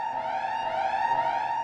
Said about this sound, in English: Alarm tells us it is time to be clean.